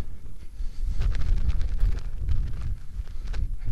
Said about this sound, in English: It's kind of snowy, kind of windy.